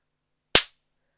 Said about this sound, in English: All right, now I'm going to clap.